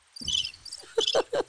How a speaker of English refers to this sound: I don't get to use the cricket sound that often.